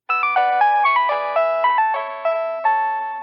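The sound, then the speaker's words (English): A Nokia mobile phone ringtone plays: a quick, bright electronic melody of a dozen or so distinct notes with a shimmering, chorus-like tone, loud with no voices. “Most people did not hear because Nokia wasn't really an ongoing concern by the point he had whipped it up.”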